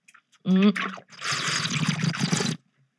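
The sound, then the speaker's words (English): A short voiced hum gives way to about a second and a half of wet, bubbling gurgle, a person burbling water in their mouth to imitate the bubbling of a bong hit, fairly loud. “You put water in your mouth and you just actually know it. I'll let you guys believe I'm taking a fat bong rip.”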